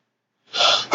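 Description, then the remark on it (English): A single sneeze: a brief breathy intake swells for half a second, then breaks into a sharp, abrupt burst right at the end, with no one talking. “Excuse me. Bless you.”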